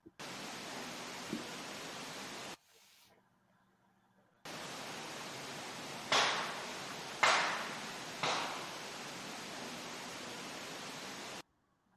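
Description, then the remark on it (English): Three sharp wooden knocks or claps, recorded overnight with no one present, ring out about a second apart over a steady hiss of static, each one loud with a short decaying tail. “So we got like three wood knocks or claps or something there right in rapid succession.”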